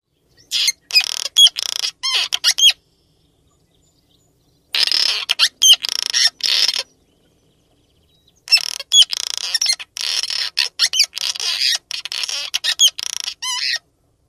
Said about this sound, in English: That was the cliff swallow. They sing, if you can call that singing, a series of guttural, rating sounds and squeaks.